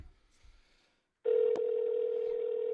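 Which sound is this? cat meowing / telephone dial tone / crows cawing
telephone dial tone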